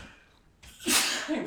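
A man sneezes once, loud, a sharp burst of breathy hiss after a brief quiet intake of breath.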